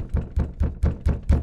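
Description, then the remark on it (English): Six steady knocks on a house door, evenly spaced, each a dull, solid thud with a short ring-out, and no voices. “Yeah, then you're knocking on the door.”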